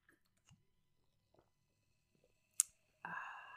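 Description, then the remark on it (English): A few soft clicks and one sharp clink as beer glasses touch in a cheers, then a steady fizz of the bubbling beer that carries on to the end. No one speaks. “Listen to that. That nice sound. Bubbling.”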